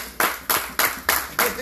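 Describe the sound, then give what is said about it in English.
A crowd claps in unison, five sharp, evenly spaced claps about a third of a second apart, loud, in a steady rhythm. “Listen, how many of you by a clap of hands came to God to get rid of your problems?”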